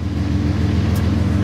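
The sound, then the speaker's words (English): A train's diesel engine revs as the train leaves the rail yard at Missoula. It makes a deep, loud, rumbling drone, its low throbbing hum holding steady and continuous throughout, with no voices present. “You can hear the sound of that diesel engine revving up.”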